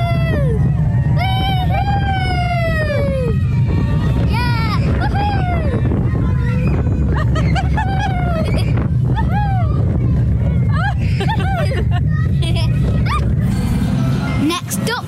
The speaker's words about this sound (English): We're going on to Farmyard Flyers, which is a smaller roller coaster but still has a lot of drops, so I'm really excited. Well, here we go. Woohoo!